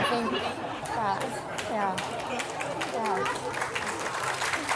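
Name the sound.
audience applauding and cheering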